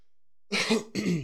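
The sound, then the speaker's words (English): Two loud, abrupt sneezes in quick succession, each a harsh breathy burst with a rough voiced edge, following a moment of silence. “Sorry about that. Bless you.”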